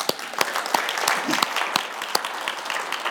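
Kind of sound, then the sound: crowd, audience applause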